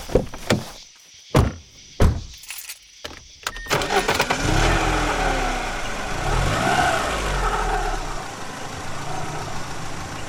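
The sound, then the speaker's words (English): A few sharp door thunks, then a car engine starts and revs up and down as it drives off, a loud, steady rumble continuing to the end with no talking. “The giant car resembled a white demon, and but for the dust would have appeared to be sailing in the air.”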